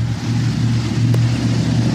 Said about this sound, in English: Loud Alabama truck.